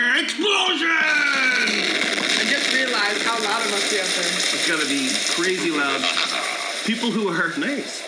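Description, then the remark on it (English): Several people yell and shout over one another as they walk past an apartment door, in a loud, continuous, chaotic burst of voices, with raised, strained tones rising and falling throughout. “Walking past our apartment door. There they go again.”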